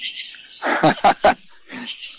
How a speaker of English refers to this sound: I'm in the backyard. Wow. You can hear everything. You hear all backyard the crickets and whatnot. We're here on all the bayou.